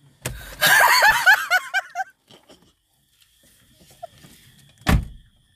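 A burst of high, chirpy squeaks and giggle-like sounds, then a quiet pause before a single solid thump like a car door shutting as a man gets out of the car at night and walks away.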